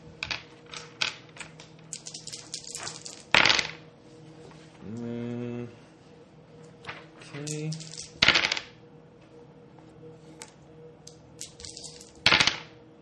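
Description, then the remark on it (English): A handful of about 15 dice, rolled for a weapon's shot in a game, rattle and clatter across a hard surface in several bursts of quick clicks, with a few sharper loud clacks and brief murmured voices in between. “Yeah, because his weapon does like 15 dice.”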